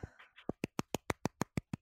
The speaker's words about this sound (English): Oh, loved it. The clapping. That was fantastic.